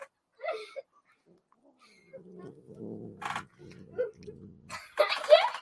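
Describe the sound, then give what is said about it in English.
A female kitten gives a low, rumbling growl that lasts a few seconds in short pulsing stretches, fairly loud, with brief bits of a person's voice before and after. “Are you going to growl some more?”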